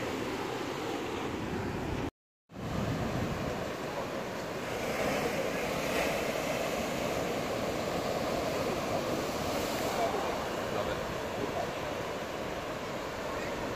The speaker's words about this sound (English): Love it. I love the sound of the ocean.